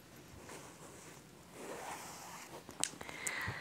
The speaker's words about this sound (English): And you have a zipper, but it's just in the inside of the boot.